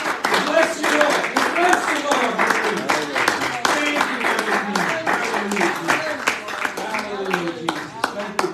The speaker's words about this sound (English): Let's give God a great big hand clap for his goodness. Amen.